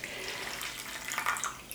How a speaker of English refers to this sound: So I've heated a pint of milk, flavoured that with a bay leaf and some grated fresh nutmeg. And then I'm just pouring that into an oven-proof buttered dish.